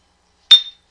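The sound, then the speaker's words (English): Two glasses of pumpkin cider clink together once in a cheers, a bright chime with a clear ringing tone that lingers briefly before fading into silence. “That was a cheers.”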